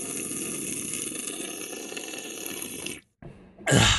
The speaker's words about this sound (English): Yeah, no, it didn't sound good on your end either. That was a big gulp, and not from 7-Eleven. Yeah, that was a BG.